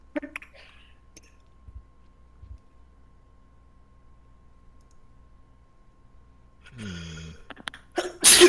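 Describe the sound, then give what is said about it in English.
A single sharp sneeze rings out after a mostly quiet stretch, preceded by a brief vocal intake and ending in a loud, noisy burst. “Gesundheit.”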